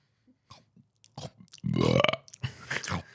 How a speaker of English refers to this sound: Okay, I'm going to try because I was told that you're supposed to like put a bubble in your throat. Yeah, that's how you do it. And then push it out, right? Okay. I can hear you pre-burping. You're not doing it right.